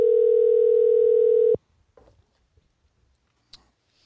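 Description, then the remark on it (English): A single loud, steady ringing tone from an outgoing phone call plays for about a second and a half, then cuts off abruptly, leaving near silence with a few faint clicks. “as I try to call him here”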